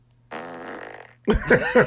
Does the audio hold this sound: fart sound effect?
yes